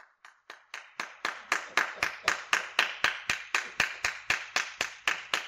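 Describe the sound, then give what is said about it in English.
A preacher imitates the long "Jack Hiles clap", clapping in a long, drawn-out run of about twenty sharp, evenly spaced claps, starting sparse and settling into a steady brisk rhythm, with no talking. “They like that Jack Hiles clap that goes five.”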